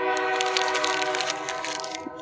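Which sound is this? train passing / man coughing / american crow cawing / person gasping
train passing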